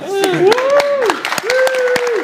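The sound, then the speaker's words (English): An audience claps for panelists, scattered sharp claps at an uneven pace, with voices whooping and calling out in sliding, sustained tones over the applause. “So if everyone would just like to clap, beats panelists.”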